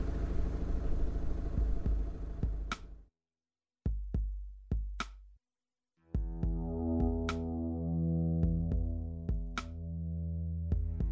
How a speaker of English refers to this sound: Hang on, just let me switch off the engine a minute.